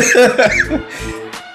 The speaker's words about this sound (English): All right, so excuse me. Let's get to the West. As I get my coughing out the way.